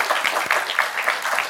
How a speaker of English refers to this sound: In fact, I've never gotten to applaud you in person before, so if you guys don't mind indulging me.